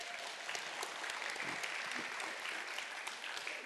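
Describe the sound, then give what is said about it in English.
Steady applause from a sizable crowd as two people come up to share, a dense wash of overlapping claps that holds at an even level for a few seconds with no voices breaking through. “Can we just clap for them as they come up?”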